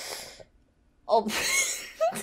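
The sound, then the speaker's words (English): A sudden gasp, a sharp breathy intake with a small burp caught in it, followed by a short second breath. No talking. “There was like a little burp that came with me gasping.”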